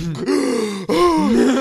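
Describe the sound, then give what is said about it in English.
A voice imitates a choking gasp from snoring: two strained, groaning bursts in quick succession, loud, with a brief catch between them. “I still snore. I just don't snore as loud as I used to when I was bigger. Mm. I used to choke myself to like awake.”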